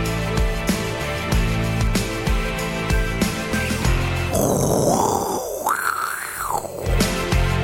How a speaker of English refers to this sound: It's not a coffee machine. That is a F-15.